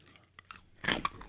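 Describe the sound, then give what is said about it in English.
A loud crunch as a pastel malted milk ball candy (pastel Whoppers) is bitten into, followed by a few sharp cracking chews in quick succession, with no talking. “It was so much crunchier than I thought.”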